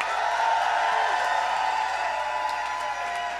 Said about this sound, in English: And please give a round of applause to my special guest host this week, the one and only Ms. Cracker.